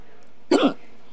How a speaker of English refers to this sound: Yeah. You having the hiccups and burping?